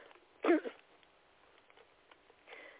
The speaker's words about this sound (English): And again, I apologize for my coughing.